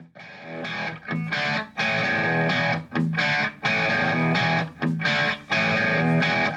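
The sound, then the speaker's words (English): A loud, distorted hard rock electric guitar riff, recorded 46 years ago, opens a song, with thick sustained chords cut by short rhythmic breaks. There are no vocals. “And I can't believe how good these 46-year-old guitar tones still sound.”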